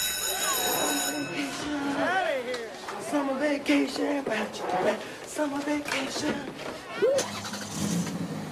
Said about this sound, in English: Tonight's episode is brought to you from the parking lot of Hot Shots Bar and Grill.